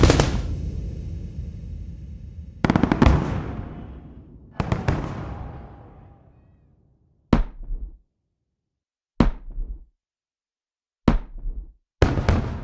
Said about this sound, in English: So now we've got the explosions kind of moving around the stereo field. We've got a little bit more kind of ear candy going on. There's a sense of contrast. It's all still pretty flat though. We need to get some depth into this sound design.